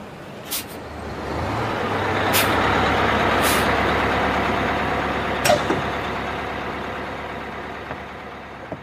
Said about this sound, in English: This is Port Forest. Next stop is Whistling Mountain. This is a southbound bus going all the way to Strange Town.